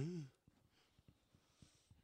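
A brief voiced yawn trails off at the very start, followed by quiet, soft breathy sounds and faint background noise with no talking.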